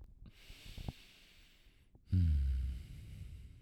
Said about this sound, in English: Deep breath. Oh, no. Lots of heavy breathing over there.